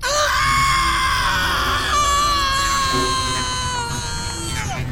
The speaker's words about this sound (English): When she got out of the pod, she closed her eyes and put her hands to her temples and screamed.